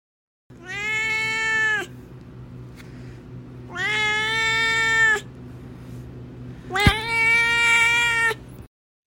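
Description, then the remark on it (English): Duarte, a pet cat, meows three times in long, drawn-out calls with short pauses between, loud over a low steady hum; the last meow starts with a brief sharp click. “But so while I'm writing that, I'll turn over to Duarte's corner, where my cat Duarte will share his opinions about the book.”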